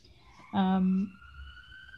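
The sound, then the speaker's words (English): An emergency vehicle siren passing outside drones faintly in the background with a slowly rising, wavering tone, while a voice briefly cuts in with a short exclamation partway through. “Ooh, sirens.”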